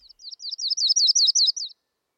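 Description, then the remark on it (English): A yellow-rumped warbler darting about gives a quick, high run of about a dozen sharp chirping notes that build in loudness and then stop abruptly, heard alone with no voices. “They dart spitefully about, uttering a sharp chirp.”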